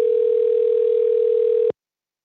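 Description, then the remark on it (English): A telephone line rings on an outgoing call to a company: one steady, electronic ringback tone holds for under two seconds, then cuts off into silence. No one speaks. “We also called them to ask what's going on.”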